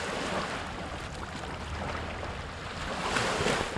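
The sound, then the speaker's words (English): Continuous splashing and lapping of lake water around a swimmer in the middle of Lake Ontario in summer, a steady wash of sloshing with some wind buffeting the microphone and no voices. “Reporting live from the middle of Lake Ontario.”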